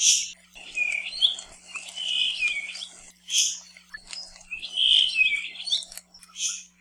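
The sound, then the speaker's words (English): A puaiohi (Kauaʻi thrush) sings a series of high, thin, buzzy phrases with wavering notes, repeating in two similar bursts. It is clear, with a faint steady hum behind it. “Like other rare and cryptic birds, the best way to find one is not by sight, but by sound.”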